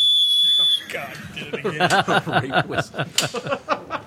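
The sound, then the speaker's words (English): A single shrill blast from a rake emergency whistle, part of an everyday-carry kit, sounds loud for under a second, then cuts off as people break into laughter and chatter. “And the fire starter and the rake whistle. God, did it again.”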